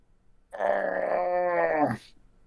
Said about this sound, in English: And you hear a howl of a wolf.